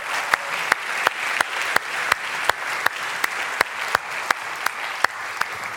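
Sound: audience round of applause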